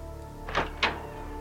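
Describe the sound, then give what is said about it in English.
Two soft, dull thuds land in quick succession, the footsteps of giant spiders in a video game, over a low steady background hum with no talking. “The little thudding sound they make.”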